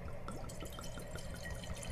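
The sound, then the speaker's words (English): Wine glugging out of a bottle in a steady, bubbly pour, with rapid repeated gulps of liquid and no one talking. “Don't you love that glug?”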